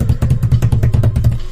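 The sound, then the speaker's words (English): A drum roll sound drop: a rapid, steady roll of low, booming strokes, about eight or nine hits per second, loud and sustained throughout with no voices. “As of anything else, I mean, I want to give, drum roll, please.”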